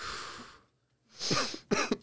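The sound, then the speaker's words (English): Coughing with no talking: a long breathy huff, a brief pause, then a rough voiced cough followed by two short, sharp coughs in quick succession. “For coughing?”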